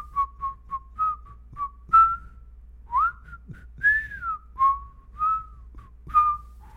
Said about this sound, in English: You want to play a game real quick where we whistle tunes back and forth to each other and I try to guess what you're whistling? Okay. All right, here's me. Ready? Okay.